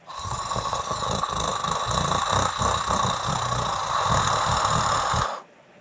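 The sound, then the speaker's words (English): A voice imitates a cat's purr: a steady, low, rattling rumble with rapid pulsing texture, held for about five seconds before cutting off abruptly. “Is that a purr? Did it sound like a purr? It sounded kind of like that. Yeah. That's my best purr.”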